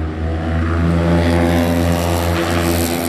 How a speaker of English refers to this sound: And that's a Mustang. Yeah, that's a 6-cylinder, dude. Did he chop his. Yeah, he wanted his car to fart. Wow. 6-cylinder. I didn't even know you could get Mustangs, little cars, to sound like that.